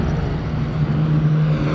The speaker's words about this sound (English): And the cars are back up again now, and we've got a few cars. There's a special up the front. I don't know what that is. Harry Frog Eye Sprite.